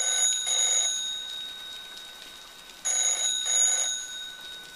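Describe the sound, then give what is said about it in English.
A phone rings twice through an earpiece on an outgoing call to a number, each ring a pair of quick electronic trills separated by a pause, with steady high tones and faint background hiss. “Still ringing.”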